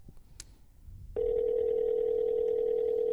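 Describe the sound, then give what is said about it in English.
A quiet tap, then the ringing tone of an outgoing phone call comes in: one steady, loud electronic hum held for about two seconds. No one speaks. “Oh, you're calling. I thought you were texting. No, I'm gonna call him.”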